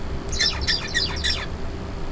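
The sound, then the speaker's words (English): A small songbird that is learning a new song sings a quick run of repeated syllables, about four bright chirping notes in a rhythmic burst lasting roughly a second, clear over a low background hum. “First, the bird sings.”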